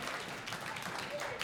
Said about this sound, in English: Thump your Bibles a few times or clap your hands a few times. There you go.